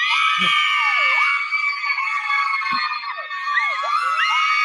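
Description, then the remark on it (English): A loud, dense crowd cheers and screams continuously, with high shrieks and whoops rising over the roar and a couple of brief low thumps. “Yeah, well, you know, I thought you were going to pause for your cheers there, but whatever.”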